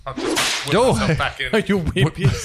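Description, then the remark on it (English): A voice imitates a reversed whip crack: a breathy rushing burst, then a string of swooping pitched glides that rise and fall several times, loud and alone. “You're very good at the reverse whip.”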